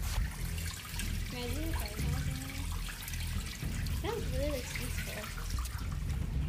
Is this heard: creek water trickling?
yes